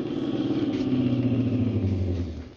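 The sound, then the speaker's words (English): A car engine rumbles on a highway out of town, its low hum gradually dropping in pitch as the car slows to pick up a hitchhiker, then easing off as it comes to a stop. No one speaks. “As I hiked along, I kept thumbing cars. The fourth one slowed down and stopped.”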